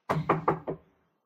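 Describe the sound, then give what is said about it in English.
Four firm knocks on a wooden door in quick, even succession, fairly loud, with a short resonant thud after each and silence once they stop. “Going down the thing, and I'm knocking.”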